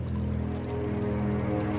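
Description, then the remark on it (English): Water churns and roils in a steady, continuous rush as a massive creature rises from it, fairly loud, with a low droning hum running underneath and no voices. “The water before the monk has begun to churn and roil, and the massive entity known as Kusodros begins to rise from the water.”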